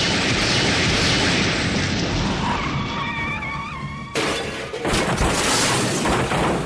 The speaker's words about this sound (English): That car totally trashed our phone booth. Most heinous.